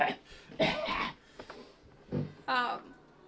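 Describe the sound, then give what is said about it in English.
Several harsh coughs in uneven bursts from someone in a fog cloud, a couple close together then a pause before two more, the last one more voiced and raspy. Moderately loud. “And misses past him in fog, and he instantly hear like coughing.”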